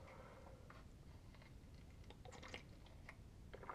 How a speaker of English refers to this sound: Excuse me one second while I take a sip of water.